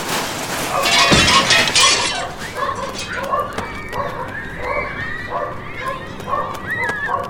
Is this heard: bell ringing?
no